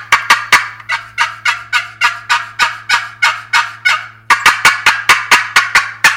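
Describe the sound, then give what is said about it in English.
A wooden box call imitates a turkey with loud, raspy yelps in a fast, steady series, pausing briefly before another run, with no talking and a faint low hum beneath. “I might switch to a box call.”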